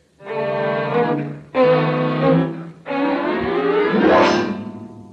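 A car engine revs in three strong bursts with short breaks between, as if shifting gears, the pitch climbing as the car accelerates away. Loud, with no voices.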